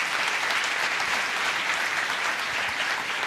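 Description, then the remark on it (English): A crowd claps steadily during a church worship service, dense overlapping hand claps forming a continuous bright patter at even loudness throughout, with no voices standing out. “We have our hands. We're clapping.”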